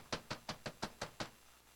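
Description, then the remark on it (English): Seven sharp knocks on the door of an ark in a quick, steady series, fairly loud, then silence. No voices. “And they begin to knock on the door of the ark.”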